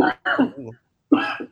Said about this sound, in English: This nigga got polio. The way this nigga coughing. I don't think those are the symptoms of polio.